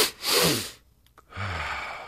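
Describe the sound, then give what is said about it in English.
A physiological sigh done to reset breathing: an audible breath in, a brief pause and a short second sniff of air, then a long, breathy exhale through the mouth, all loud with no talking. “And he calls this a physiological sigh, and it goes like this.”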